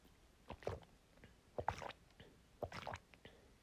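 Three loud, wet gulps of water as a person drinks, spaced about a second apart, with quiet pauses between swallows and no talking.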